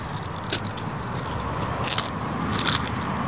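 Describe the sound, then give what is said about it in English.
Crunching of a crisp Frito-Lay chip being bitten and chewed, with several sharp crackly bursts over a steady noisy background and no talking. “on a scale of 1 to 10, where's the crunch factor on that chip?”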